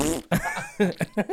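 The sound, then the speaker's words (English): A voice imitates a fart with a few short, buzzy bursts in quick succession, fairly loud, with no other talk. “Yeah, whereas on the phone you're on the spot and you think, oh fucking hell, or just fart down the phone.”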